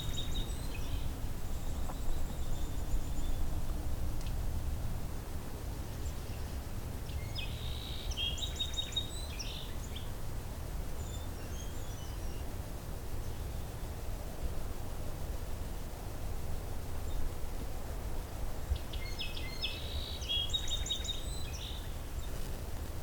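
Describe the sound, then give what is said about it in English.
A song sparrow sings a few short, bright phrases at spaced intervals over a steady hiss of wind or background noise. There are no voices. “Song Sparrow's back again.”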